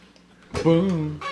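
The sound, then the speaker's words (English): A person imitates a chicken with a single drawn-out, throaty cluck-like call, fairly loud, with a short burst of voice trailing at the end. “I'm a chicken.”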